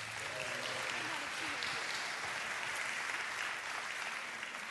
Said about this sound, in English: So these are some of our amazing teenagers. They're a little bit nervous. Why don't you give them a round of applause?